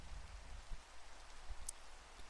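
rain falling

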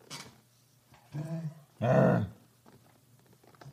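dog growling and grunting

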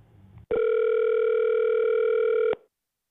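telephone ringing

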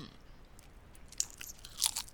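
chewing crunchy snack

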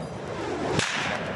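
whip cracking

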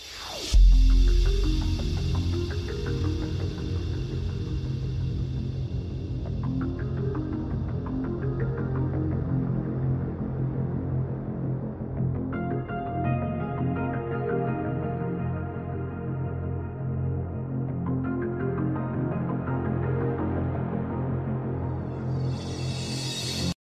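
arena crowd chanting

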